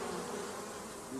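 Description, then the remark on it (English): African honey bees buzzing in a dense, steady drone, fairly loud, a continuous swarm hum with no pauses and no voices. “But these are African bees. These are killer bees, I think.”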